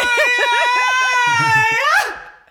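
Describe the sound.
A person demonstrates the constant screaming of people in an acting or improv class: one loud, sustained, strained high-pitched wail held for about two seconds, sliding upward at the end before cutting off.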